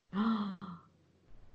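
A single loud, close gasp of surprise, voiced and sharp at first, then trailing off into a brief breathy tail before quiet room noise.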